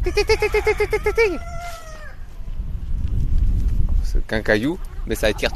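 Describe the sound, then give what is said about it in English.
A flock of over 100 Gaulois Doré chickens on a 1.5 hectare educational farm in the village of Méry-sur-Seine, France: several roosters crow in overlapping, drawn-out calls while hens squawk and cluck, followed by a low outdoor rumble and more sharp bird calls toward the end. “I went along to meet him and his very vocal flock.”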